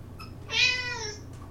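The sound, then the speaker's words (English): A single clear cat meow sound effect, drawn out and slightly falling in pitch, heard alone over a low steady background hum. “That wasn't me. Jesse found a sound effect.”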